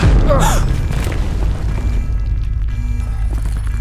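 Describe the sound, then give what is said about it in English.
A loud, deep explosion in the lower plant ring bursts out and then rolls into a heavy, sustained low rumble that fills the rest of the moment, with no voices present. “Some kind of explosion, lower plant ring.”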